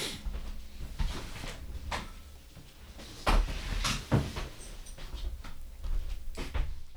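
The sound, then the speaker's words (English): A door being closed, with a few sharp thuds and knocks amid rustling and handling noises, the loudest impact landing about midway through. “I'm going to close the door because the dog came in.”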